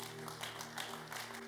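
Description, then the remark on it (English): Scattered clapping from a church audience, soft, with a faint electrical hum running steadily underneath and no one speaking. “I thought you were clapping.”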